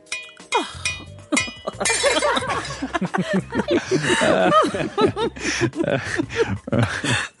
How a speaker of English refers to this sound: You whirl around to face me as you gloat and accidentally knock your glass of Pinot Noir to the ground.